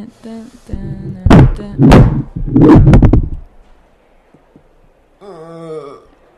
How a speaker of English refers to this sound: Oh, he just hit his head.